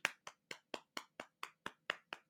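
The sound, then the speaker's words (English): Applause in the form of about ten crisp, evenly spaced hand claps in a steady rhythm, each one sharp and moderately loud, with no talking. “Everyone, pause for applause for how great my Instagram thumbnail was.”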